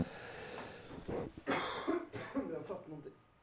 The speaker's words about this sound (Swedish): Jag kan berätta att jag också har haft lite hosta. Så jag känner igen det här. Och jag hade gärna gett dig lite Noscapin som är en hostmedicin.